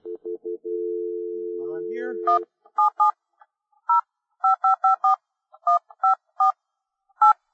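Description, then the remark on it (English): A steady phone dial tone, briefly stuttering at first, gives way to a quick run of about a dozen short touch-tone keypad beeps in an uneven rhythm, clear, as a phone call is placed to a pinball company in Atlanta, Georgia. “we're about to give James Laughlin of Pinball Inc. in Atlanta, Georgia, a call on the phone”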